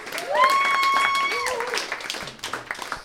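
A round of applause, dense steady clapping for about three seconds, with a long sustained cheer or whoop riding over it before the clapping thins out toward the end.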